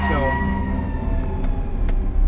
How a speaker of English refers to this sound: I had to pull over for a minute. Got the fire trucks coming through. Want to make sure that they get to where they need to go, by the way.